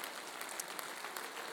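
A crowd claps steadily for the people who helped decorate the sanctuary and foyer for Christmas, a dense, continuous patter of many hands at moderate loudness with no voices over it.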